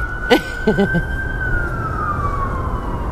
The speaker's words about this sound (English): We got the sirens on and what's going on in Vegas. We're on the rooftop.